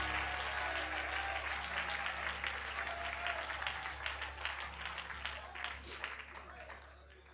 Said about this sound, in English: Oh, clap your hands and give him praise. I am closing. Oh, clap your hands and give him praise. Oh, come on. I am closing, but give him praise right now.